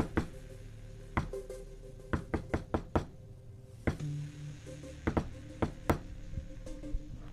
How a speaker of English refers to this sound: There is the sort of Goodwill Hunters knock on the door